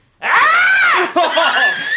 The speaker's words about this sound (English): It's more of a frustrated, and it's a deeper scream than Bobby's. So I'd say this is my frustrated scream.